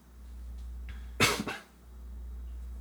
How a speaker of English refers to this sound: I thought this nigga left. Nigga coughed.